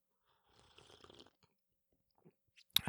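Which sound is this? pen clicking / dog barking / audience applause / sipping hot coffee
sipping hot coffee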